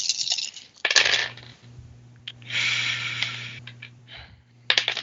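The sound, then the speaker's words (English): Dice clatter and rattle across a hard tabletop in a few bright bursts, with a longer rolling stretch in the middle and a faint low hum underneath. “Roll some dice here.”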